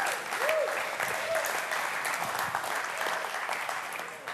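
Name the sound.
audience clapping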